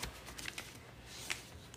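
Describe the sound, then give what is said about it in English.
Soft, continuous papery rustling and crinkling as slips of paper with questions written on them are stirred around in a bowl by hand, with a few sharper crisp rustles standing out. Fairly quiet, with no talking. “And so this is just a bowl of pieces of paper with questions on it.”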